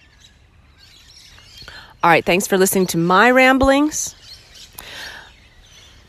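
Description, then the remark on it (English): Faint Australian warbling birds warble and chirp softly in Australia, continuing behind a man who speaks briefly in the middle. “Those are very Australian birds. I don't know the names of those. They're like warbling birds.”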